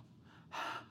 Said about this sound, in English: Listen to this from the same chapter here. The ways in which I open my mouth and pant because I long for your commandments.